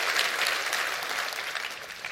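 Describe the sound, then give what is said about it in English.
An audience at a church service claps steadily, a dense wash of many hands applauding together, sustained and even throughout with no talking over it. “Come on, clap your hands real big to that right now.”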